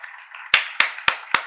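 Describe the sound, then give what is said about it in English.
Four sharp hand claps in a steady, even rhythm, fairly loud, following a brief stretch of soft background noise. “Give a hand clap for the show.”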